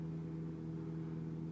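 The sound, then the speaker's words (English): An airplane's engine drone hums steadily, a low tonal rumble with layered harmonics holding a constant, moderate level throughout, with no voices present. “There's a plane. Let's let it pass.”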